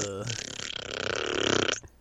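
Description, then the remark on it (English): A loud fart noise made with the mouth: one sustained, buzzy, sputtering raspberry lasting nearly two seconds before cutting off abruptly. “I mean, that's a good way to end this podcast, is just fart noises.”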